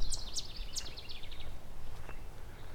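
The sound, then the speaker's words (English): An annoyed yellow warbler gives a few sharp, high chips, then a quick run of shorter notes that fade off, over a soft outdoor rumble with no one speaking. “Yellow warbler.”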